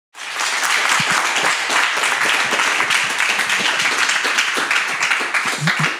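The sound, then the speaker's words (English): Steady audience applause, a dense wash of many hands clapping at an even, loud level for several seconds after a brief silent start, with a few faint voices mixed in. “You don't have to clap.”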